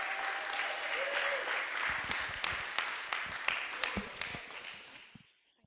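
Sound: audience cheering and applause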